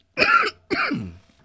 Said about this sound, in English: It's such a clean fucking hit, isn't it? Yeah, I held it in too long, so definitely gonna cough. Might not. Nah, the whole time I was talking, I felt it.